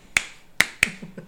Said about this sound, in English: So, and then you do the weird, like, Donkey Kong clap.